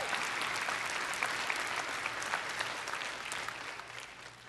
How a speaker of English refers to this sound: Now you can clap.